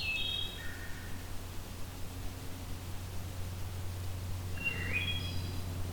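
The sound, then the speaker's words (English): A black-throated green warbler sings two short, buzzy high phrases, one at the start and one near the end, over a steady hiss of background noise, in coniferous woods of white cedar, pine and spruce near Hamilton, southern Ontario, Canada. “And so turns out black-throated green warbler is here at the moment.”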